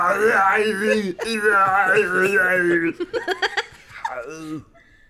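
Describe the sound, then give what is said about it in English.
A voice imitates a man choking and gasping for breath: a long, strained, throaty vocal sound, then a rapid series of short gulping gasps and a final wheezy gasp for breath, loud. “He grabbed his neck, his mouth fell open, he gasped for breath, and it sounded like this.”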